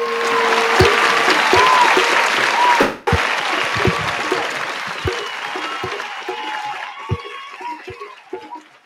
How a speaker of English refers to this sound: Shucks. Hey, thanks a lot. Thank you very kindly. Thank you to each and everybody clapping.